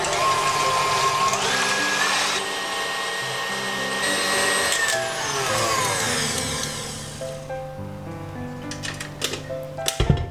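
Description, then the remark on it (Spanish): An electric mixer whirs steadily as it whips very cold cream in a bowl, its motor pitch shifting slightly, then winding down into a few clinks and taps toward the end. “Ponemos la nata en el bol. Y montamos.”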